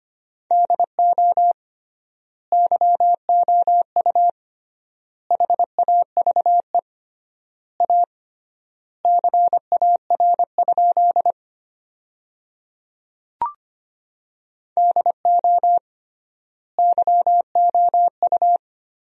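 Rapid Morse code beeps at about 25 words per minute with triple word spacing, sending sentences built from the 300 most common words: a steady mid-pitched tone keyed into quick dots and dashes, sent in bursts separated by longer silent gaps, with no talking.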